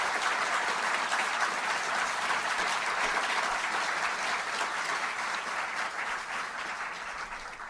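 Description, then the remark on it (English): Sustained applause from a crowd, dense steady clapping filling the whole stretch at a fairly loud level, tapering only slightly toward the end with no voices standing out. “And the seals and the taxiers clap, right?”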